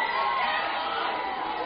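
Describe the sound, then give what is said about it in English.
A dense, steady roar of a basketball crowd shouting for a technical foul on player Logan LePage, many voices yelling together at a constant loud level with no breaks, brighter upper tones riding over a low rumble. “Logan, the crowd is calling for a tee him up for Logan LePage.”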